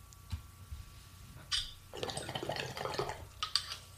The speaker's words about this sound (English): I like that bong. It's nice and oh my God, bubbly. I love this. And the water doesn't, it's so big, the water doesn't splash up into my lips.